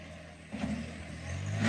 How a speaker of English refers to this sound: So now here come the tractors. Drive it down.